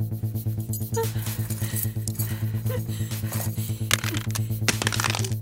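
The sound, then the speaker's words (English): A scattered series of hard plastic clacks and clatters as cell phones and alarm pagers are tossed out onto a hallway floor, irregular sharp hits over a steady low electrical hum. “Now everyone slowly pull out your alarm pagers and cell phones and toss them outside into the hallway.”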